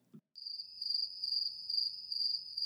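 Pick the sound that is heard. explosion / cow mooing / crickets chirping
crickets chirping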